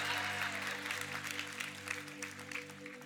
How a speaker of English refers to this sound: So we thank, hey, it's Father's Day. Don't clap for that one.